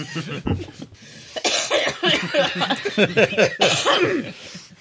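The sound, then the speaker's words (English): A sharp cough bursts out near the start, followed by a stretch of lively, overlapping chatter and chuckling from several people. “Okay, who coughed?”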